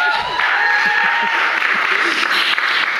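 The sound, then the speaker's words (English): An audience at an evening talk at Yale breaks into a round of applause for Leah Penniman, founding co-executive director of Soulfire Farm and author of Farming While Black; dense, steady clapping that stays loud and even for about three seconds, with a few voices faintly mixed into the noise. “As tonight's, yes, round of applause for that.”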